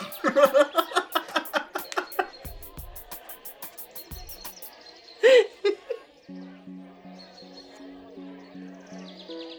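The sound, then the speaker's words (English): A loud, rapid flurry of chirps from several birds, overlapping in quick bursts, then a single sharper call before the chatter fades and a steady tonal hum takes over. “I think I'm at a bird party.”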